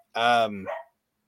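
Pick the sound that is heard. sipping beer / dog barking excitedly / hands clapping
dog barking excitedly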